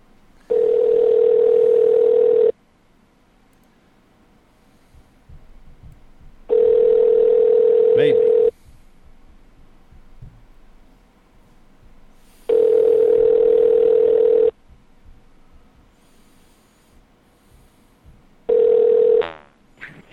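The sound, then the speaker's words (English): Ringback tone of an outgoing phone call: a steady, loud electronic tone lasting about two seconds, repeating every six seconds with quiet gaps, four rings, the last cut short. “Let's hope that number works.”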